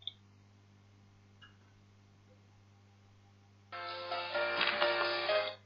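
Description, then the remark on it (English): A crisp computer mouse click sounds right at the start as a theme is chosen in an online tool, followed by a softer click a moment later; then a louder, steady rushing noise fills the rest. No one speaks. “Again, I click.”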